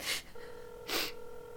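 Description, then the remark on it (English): A steady electronic telephone ringing tone hums faintly through a receiver, broken by two sharp, loud breathy gasps, one at the start and one midway. “It's ringing. Take it.”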